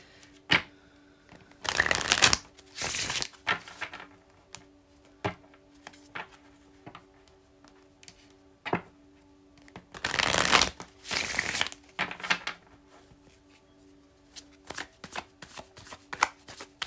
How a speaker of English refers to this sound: And without further ado, let me go ahead and shuffle these cards and we can get into it.